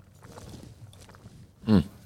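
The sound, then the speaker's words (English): Hot pot broth bubbling in a soft, irregular gurgle, with small pops scattered throughout and one louder, sharper burst of bubbling near the end. “Oh, here, while you're doing that, let's listen to the bubbles. You can really hear it right now.”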